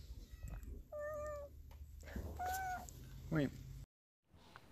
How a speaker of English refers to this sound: Enjoy my cat screaming at us in the background.